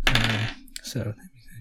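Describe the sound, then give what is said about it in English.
Twenty-sided dice clatter across a hard tabletop in a quick burst of bright clicks and rattles, with a brief voiced sound at the start and a few softer taps as they settle; players are rolling for initiative in Dungeons & Dragons. “They roll a 20-sided dice, and then basically... we go in order of who got the highest roll.”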